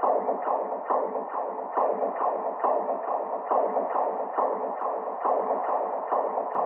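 A fetal heartbeat sampled from an earlier ultrasound scan: rapid, steady whooshing thumps, roughly two or three per second, repeating evenly and fairly loud throughout with a muffled, watery texture and no voices.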